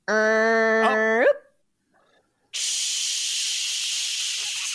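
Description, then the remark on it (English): A computer sound effect for the BetQL computer: a buzzy electronic tone holds steady, then bends sharply upward and cuts off. After a short silence, a loud, steady static-like hiss fills the rest. “The Donkster also says, oh, wait, it's the BetQL computer. Chelsea, do it. Beep, boop, beep.”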